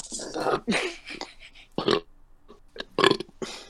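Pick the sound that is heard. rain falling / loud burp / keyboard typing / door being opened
loud burp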